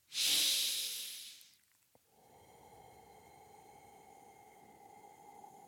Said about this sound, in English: When you're breathing out, make sure that you're breathing out through your mouth. And when you're breathing out, imagine that you're breathing out through a straw, or that you are fogging a mirror.